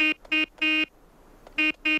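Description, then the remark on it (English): A buzzy, mid-pitched horn on a gun honks Morse code: two short blasts, one longer blast, a pause, then two more short blasts. No one speaks. “The gun starts honking Morse code, which apparently none of the other trucks could have honked.”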